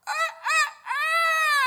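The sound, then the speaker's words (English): A rooster crows, loud and clear: two short clipped notes, then a long, sustained final call that holds steady to the end. No voices. “Methinks I will catch a few hours before the cock crow.”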